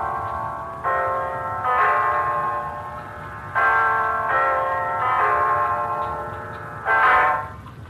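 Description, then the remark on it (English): A clock bell strikes nine o'clock: slow, evenly paced resonant chimes, each ringing out with bright sustained overtones before the next stroke. No voices accompany it. “It's 9 o'clock, Mrs. Reeves.”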